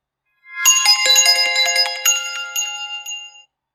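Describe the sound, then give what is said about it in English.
Bright chimes ring out a quick melody, several struck notes overlapping and shimmering as they sustain, loud, before fading out after a few seconds. No voices. “They really have to go that hard with the chimes right off the bat.”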